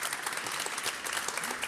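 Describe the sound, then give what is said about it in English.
An audience applauds the panellists steadily, a dense wash of many hands clapping at once with no pauses, bright and crackly throughout the short burst. “Okay, well, ladies and gentlemen, could I ask you please a round of applause for our panellists?”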